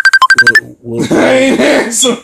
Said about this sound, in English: Of course, somebody calls while we doing the podcast. I know y'all hear the phone ringing. I ain't answering.